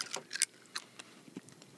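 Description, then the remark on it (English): A hard candy being crunched between teeth, with a handful of sharp, brittle cracks in an irregular burst, then a few softer crunches trailing off, with no talking. “No, don't crunch it. Waste it. You're wasting it.”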